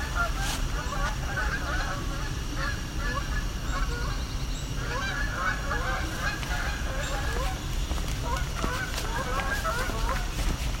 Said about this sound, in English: There's some Canada geese going overhead.